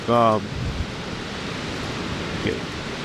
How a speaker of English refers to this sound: That's some pretty intense wind right there. Yeah, try not to get blown away. Well, yeah, that was a really bad storm. We're actually in Alabama today, and there was a really bad storm last night here.